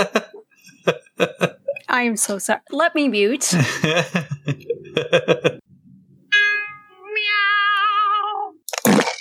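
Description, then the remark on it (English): A cat retches with a drawn-out, wavering yowl lasting about two seconds, loud, after a stretch of people talking, with a brief harsh burst at the very end. “Is that your cat? I am so sorry. Clopping? Or is he throwing up?”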